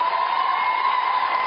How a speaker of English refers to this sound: I love all the women in the background cheering wildly for this.